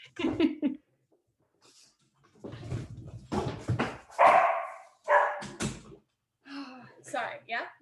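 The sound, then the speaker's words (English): A dog barks in several short, irregular bursts, with muffled voices and other noises mixed in between the barks. “It was either going to be your dog or my toddler or my 6-month-old. So always the dogs.”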